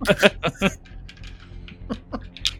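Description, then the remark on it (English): Small dice, rolled for initiative, rattle and clatter, a quick run of sharp clicks and taps that bunch together at first, then scatter into lighter, sparser ticks as they settle. “Sorry, I got little dice here.”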